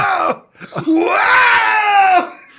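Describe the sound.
A person lets out a loud, strained screech in imitation of an eagle's cry, a short burst followed by a long rising-then-falling wail.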